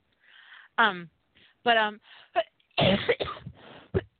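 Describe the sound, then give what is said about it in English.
A dry cough sounds several times in short, harsh bursts, mixed with voiced throaty sounds and brief vocalizations between them. “My cough is probably going to get a little bit worse.”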